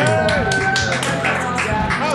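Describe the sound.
An audience applauds with a steady, dense patter of clapping, mixed with cheering voices and a few high whistles, loud throughout the short burst.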